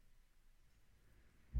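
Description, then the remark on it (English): Near-silent low background rumble, then a sudden deep crash of thunder from lightning outside a house bursts in at the very end, loud, cut off almost as soon as it starts. “Lightning crash outside my house. I just heard that.”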